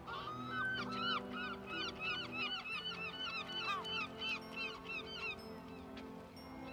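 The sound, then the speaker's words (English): A crowd of seagulls calls loudly and continuously over a harbour under an overcast sky, diving into grey waves, many harsh, rising cries overlapping, with a low steady rumble underneath and no voices. “watching the seagulls float through the overcast sky and occasionally dive into the grey waves”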